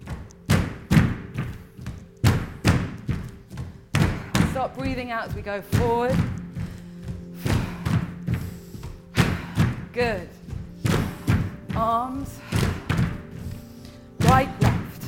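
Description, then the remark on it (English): Repeated heavy thuds of feet stamping on a floor as a group steps forward and back with knees a little bent, coming in an uneven rhythm of strong low impacts while a voice talks and gives instructions over them. “And keep the knees a little bent, but start to stamp a little, feel like you're stamping down into the floor.”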